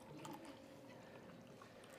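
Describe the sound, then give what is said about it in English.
Grape juice pours out in a steady, continuous trickle for about two seconds, fairly soft, with a faint splashing texture and no talking. “And so they would come in and they would pour out their sacrifice. And this is just grape juice.”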